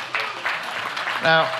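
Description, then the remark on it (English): A few scattered handclaps from a crowd, uneven and sparse rather than full applause, with a short voiced call rising over them near the end. “Now, when one person claps, we all clap, so let's try that again.”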